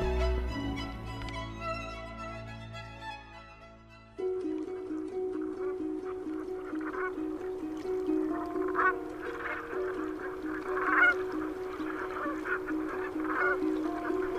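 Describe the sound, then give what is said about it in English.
A large flock of brent geese on an Irish island honks and calls continuously on a spring morning in April, a dense overlapping chorus of throaty murmuring cries that swells after a brief opening of a few tonal notes. “The Brent geese are ahead of us there, Tom.”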